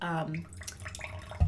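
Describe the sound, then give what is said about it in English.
Coffee splashes and trickles into a cup for about a second, fairly loud, with a short burst of voice at the start and a soft thump at the end. “pouring coffee”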